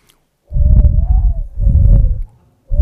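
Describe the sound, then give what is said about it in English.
A person whistles to imitate a dove's coo with a low, breathy whistled hoot, two drawn-out phrases with a brief pause between, then a third just beginning. “They flit around, and I've been practicing how to whistle like a dove. I'm going to try it here.”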